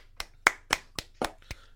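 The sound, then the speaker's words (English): Brief applause: about six sharp, crisp hand claps in a steady, quick rhythm, moderately quiet, with no voices. “Round of applause.”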